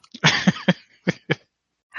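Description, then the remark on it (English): A fit of harsh, painful coughing: several rough bursts in quick succession, then two more separated coughs after a short pause, ending with a faint breathy sound. “Oh, damn it, that hurt, coughing.”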